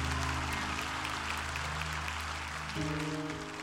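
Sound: audience clapping hands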